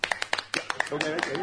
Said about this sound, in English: I love your enthusiasm, but you guys don't have to clap after everything I say.